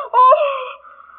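A woman lets out a single loud, high-pitched scream that bursts out suddenly, holds briefly, then trails off into a fading, wavering wail over about a second.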